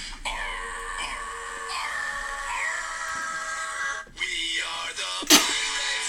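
A woman lets out a single sharp sneeze near the end, a brief burst cutting over steady, sustained musical tones that play throughout, with a small throaty sound just before it.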